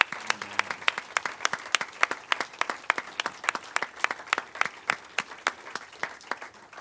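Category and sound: crowd, audience applause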